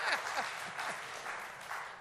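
An audience applauds steadily for two seconds, a dense, even patter of many hands clapping at once, with faint voices mixed into the crowd noise.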